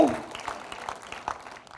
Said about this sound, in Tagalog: Mahinang palakpak po yan. Come on. Come on, if you have faith to believe.